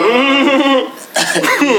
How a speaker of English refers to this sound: It's kind of pulling we finna bad, coughing. We finna coughing. You coughing already and shit.